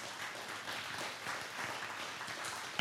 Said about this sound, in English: y'all can clap, seriously.